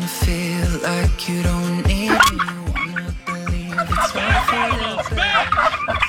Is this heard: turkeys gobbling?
yes